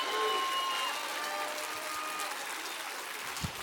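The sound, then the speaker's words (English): An audience applauds steadily, a dense wash of many clapping hands sustained at an even level throughout, with faint cheering tones mixed in and no clear speech. “Come on, somebody, clap real big for that, because he does.”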